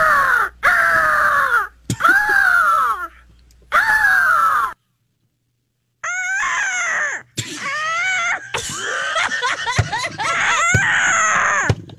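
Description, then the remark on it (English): Someone mimics an eagle's screech with three loud, harsh, falling cries, then after a short pause launches into a rapid run of shrill, chattering squawks. “Okay, and last but not least, we have PMS Eagle.”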